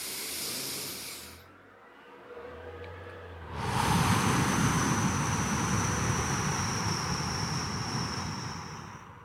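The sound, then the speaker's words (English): During a deep breathing exercise, a slow, airy inhale of about seven seconds dies away into a brief hush as the breath is held, followed by a longer, louder breathy exhale that hisses steadily to the end. No one speaks. “So I just inhale for 7 seconds, hold my breath, and exhale for slightly longer. So something like this.”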